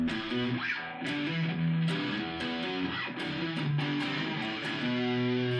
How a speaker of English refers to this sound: Let me turn off the reverb because it's making it muddy.